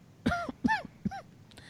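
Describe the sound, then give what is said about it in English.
Three short, voiced coughs in quick succession, evenly spaced, each with a raspy, slightly tonal rise and fall, from clearing dust, followed by a faint click. No speech accompanies them. “Notice that cough.”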